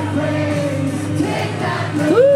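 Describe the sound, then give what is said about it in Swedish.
A loud, dense crowd roars and cheers with sustained excitement, many voices blending together, and a rising whoop cuts through near the end. “Publiken är extas.”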